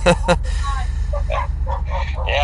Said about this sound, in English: Had his German Shepherds, I guess, in the background. That good old dog, guard dog, so to speak, huh?